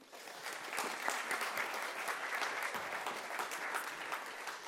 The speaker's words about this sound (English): Thank you for your help. Thank you very much. You can give him a little clap.